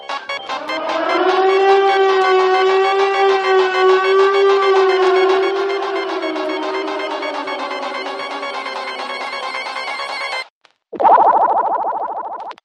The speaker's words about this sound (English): That was a siren. That was a siren.